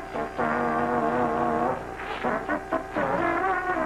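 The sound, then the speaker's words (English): A person hums the tune of Clutch Cargo with no words, holding a long steady note before shifting into shorter, bouncing phrases that rise and fall in pitch at a fairly even loudness. “Humming to the tune of Clutch Cargo.”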